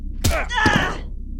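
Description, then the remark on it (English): A heavy punch lands on a woman with a sharp smacking thud, a second blow follows quickly, and a pained vocal groan rises between the hits before fading. “I guess punching ladies is something you've gotten used to.”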